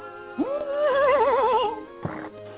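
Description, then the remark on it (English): A horse named Stanley whinnies loudly, its call rising sharply and then wavering in a long trembling neigh before fading, followed by a short breathy snort. “Good horse. Good horse.”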